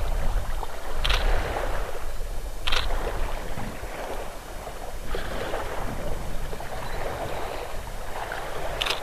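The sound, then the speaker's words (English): A steady rush of a pontoon boat moving at a fair speed across open water, a continuous broad hum and wash, with a few sharp camera-like clicks spaced apart as it is photographed from a cliff. No one speaks. “There's Henrik out there in his pontoon boat getting his picture taken now by me.”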